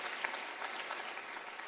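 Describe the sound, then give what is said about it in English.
A church audience claps their hands during a Sunday morning service in steady, dense applause, a continuous wash of many overlapping claps at an even loudness with no voices standing out. “Can we clap our hands one more time for all that God is doing in Italy and all over all of our campuses?”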